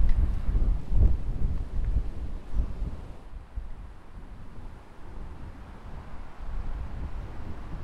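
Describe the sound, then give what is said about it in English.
Strong wind buffets the microphone outdoors in a continuous low rumbling roar, with heavier gusts thumping in the first few seconds before settling into a steady, blustery rush. “This is very, very windy. The wind's getting up.”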